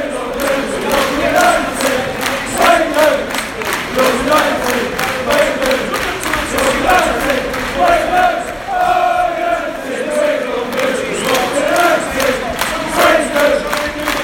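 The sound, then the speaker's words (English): United football fans in a stadium away end roar and chant together, a loud, steady wall of massed voices with rhythmic clapping pulsing through it for the whole stretch. “And as you can hear, everyone's all right with that.”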